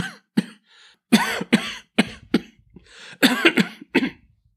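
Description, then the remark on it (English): A loud fit of harsh coughing from a person who has given up smoking and started vaping: about ten rough bursts, some single and some in rapid clusters, with brief raspy breaths between them and no talking. “And I've got a bit of a bad cough there, Mum, but it's just because I've given up the old smokes and started this vaping malarkey.”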